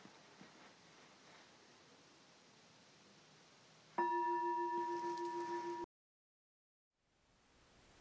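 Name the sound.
meditation bell ringing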